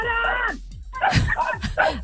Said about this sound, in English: these dogs are barking 24/7